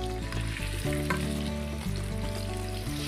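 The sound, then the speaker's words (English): Chicken sizzles and crackles steadily in hot oil, a dense, continuous frying hiss with scattered pops and no voices over it. “The hot oil they go.”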